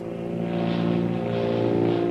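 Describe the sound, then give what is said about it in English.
A powerful seaplane's propeller engine drones steadily at a fairly loud, even level as it rapidly climbs after a speedy takeoff, thousands of feet above the blue Pacific Ocean, its low harmonic tone holding constant with a slight swelling whoosh over the top, with no voices. “after a speedy takeoff, the powerful seaplane rapidly climbs into the air, thousands of feet above the blue Pacific Ocean.”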